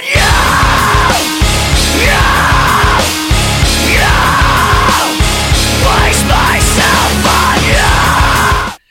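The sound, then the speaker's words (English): A loud, heavy rock breakdown with a chugging distorted guitar riff in stop-start bursts, topped by raw screamed vocals that rise and fall over the driving rhythm. “Here's a big riff now for you. Enjoy having a bit of a mosh.”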